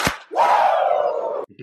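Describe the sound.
A sharp hand clap, then a loud, sustained high-pitched Rick Flair-style "woooo" yell lasting over a second, cut off abruptly and followed by a brief faint murmur.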